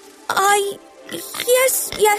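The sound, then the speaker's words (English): A voice imitating a pig, giving three or four loud, squealy oinks and snorts in a quick burst, one after another, as a muddy pig comes up, jumps on a flat car and nuzzles someone. “Oh, she's all muddy and smelly and delightful, said Bruno, as the pig came up, jumped on the flat car and nuzzled him.”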